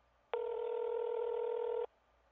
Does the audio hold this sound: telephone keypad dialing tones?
yes